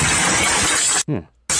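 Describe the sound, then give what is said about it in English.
Loud, sustained shattering of old single-pane glass from the force of a cannon being fired, a dense bright crash with a brief break where a short voice-like sound cuts through before the crashing noise resumes. “Yeah, that's shitty old single pane glass for sure.”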